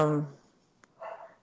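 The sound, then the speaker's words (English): A female foster dog gives a short, loud bark, followed after a brief pause and a faint click by a second, softer bark, with nothing else going on. “If you can hear her, she's my foster dog.”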